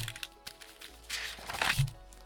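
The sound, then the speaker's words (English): Paper pages of a doodle-filled sketchbook flap and rustle close to the microphone in a few quick, airy swishes, the last one the loudest, with no talking over them. “I wonder if you can hear that. All the flapping of paper.”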